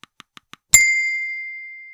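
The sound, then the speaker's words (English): A kitchen timer ticks softly four times at a steady pace, then gives one bright, high-pitched ding that rings on and slowly fades away. “Is it a kitchen timer? That's right.”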